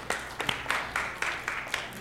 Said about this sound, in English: Can we give an applause of thanks to them?